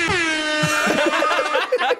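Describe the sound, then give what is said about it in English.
A loud, blaring air horn sound effect holds steady for about a second, then breaks up as laughter and chuckling come in over it. “We get an actual air horn. An actual air horn. Not just a sound effect.”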